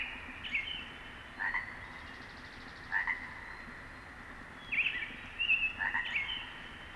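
A nearby chorus frog gives short, punctuated ribbits in irregular bursts, set against a steady, faint clamor of many frogs calling far off in the background.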